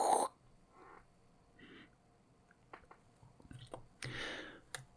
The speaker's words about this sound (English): And he takes a sip.